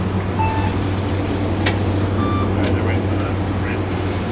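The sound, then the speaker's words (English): A bus engine idles with a steady low rumble while people board, with two sharp clunks, a few faint beeps, and muffled voices in the background. “Getting on our first bus.”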